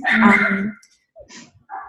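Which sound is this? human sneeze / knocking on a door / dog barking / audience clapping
dog barking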